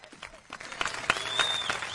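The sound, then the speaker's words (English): A short burst of clapping, several hands striking in quick, irregular succession, moderately loud, with no one talking over it. “for our listeners, every Saturday, 8 a.m. to 9 a.m. on KFNX, you guys get a special clap”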